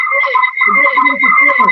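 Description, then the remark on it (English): A steady electronic whine with a strong sustained tone and warbling, garbled artifacts underneath, like loud interference or crosstalk bleeding over a phone line. “What's that noise? There's some interference.”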